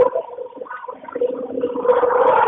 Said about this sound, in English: What the hell? Are you on a train? I am on a train. That is incredibly loud. Wow. Yes, it is. Usually it's not that loud. It's pretty bad.